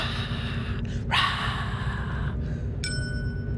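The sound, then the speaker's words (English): A single bright dinner-bell ding used as an email notification chime, signalling an incoming work email while driving to work, striking once and ringing on with a clear metallic tone over a steady low rumbling background noise. “And if you hear the dinner bell ding like I just did there, that means that I got a work email because I'm responsible.”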